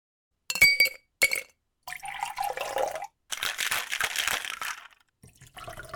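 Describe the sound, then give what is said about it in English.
Two bright glassy clinks, then a cocktail pours into a glass with a gurgling, bubbly rush that runs for a few seconds, with no voices. “Not only is it fun to gather the ingredients, shake, and pour a drink, it's also really tasty.”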